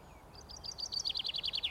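A chaffinch peeps in a quick run of high, bright notes that speed up and grow louder, over faint outdoor background noise.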